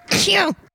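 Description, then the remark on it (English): A person sneezes once, loud: a sharp burst of breathy noise with a falling voiced tail, lasting under a second and heard on its own. “I was just going to say bless you.”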